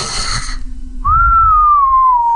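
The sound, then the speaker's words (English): A breathy rush of air, then a single long whistled note, steady, sliding slowly downward in pitch as the breath runs out. No one speaks. “Would you rather whistle every time you exhale?”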